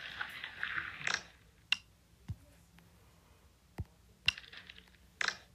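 Wet slime squishing with sticky crackles and sharp little pops, arriving in a few separate bursts with quiet pauses between them. No one talks.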